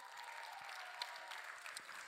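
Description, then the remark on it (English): A crowd at an evening youth meeting applauds the new people, a dense, even wash of many hands clapping at once with no pauses, holding a constant moderate loudness throughout. “Come on, let's clap for all the new people.”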